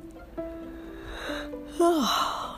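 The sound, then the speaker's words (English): A drawn-out yawn: a long, steady voiced tone that swells louder near the end, then slides down in pitch with a breathy exhale as it fades. “Excuse all my yawning.”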